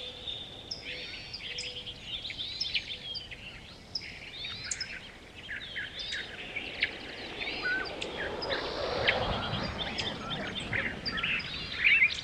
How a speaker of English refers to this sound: Whoa! We just got buzzed by a flock of band-tailed pigeons. They sounded like fighter jets.